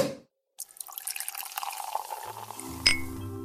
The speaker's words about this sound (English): All right, who are you pouring some champagne to? I am pouring some champagne to the 1967 cartoon version of The Jungle Book.